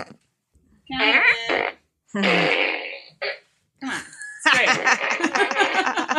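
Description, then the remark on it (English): A toy fart gun lets out a run of loud, buzzy fart noises: several short blasts separated by brief pauses, then a longer, warbling one at the end, clear. “Yeah, well, I have one of those fart she's guns.”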